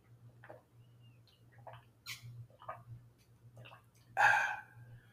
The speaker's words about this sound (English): I hope that me drinking water picks up on the microphone, because I don't like doing long pauses, but I do. I also really like drinking water